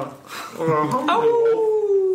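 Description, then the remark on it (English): A person lets out a drawn-out wolf-like howl, a voice imitating the animal, rising briefly and then sliding slowly downward in a sustained tone, fairly loud. “Wolfed it down. Like a regular wolf.”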